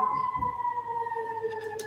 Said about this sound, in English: Okay, that's how you know it's lit, man. The sirens are going off. That's how you know it's lit.